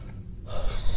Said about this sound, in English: All right, we got to take a break. My arm is going crazy. I can tell. You're breathing really hard. Yeah, my arm is fucking losing it, so...